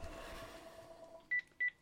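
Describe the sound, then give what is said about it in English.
Two short, high electronic phone beeps sound in quick succession, clear, following a second or so of faint background hum. “wow, just can't get that phone off fast enough.”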